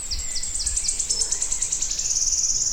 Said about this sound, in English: That'll be about the best ever recording of wood warblers I'll ever get.